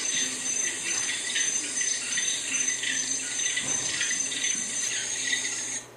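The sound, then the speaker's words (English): A dense chorus of frogs in a forest croaks and trills without pause, a steady high-pitched wash of overlapping calls that holds the same loudness throughout, with no voices. “All those frogs going, ribbit, ribbit, ribbit, ribbit, ribbit.”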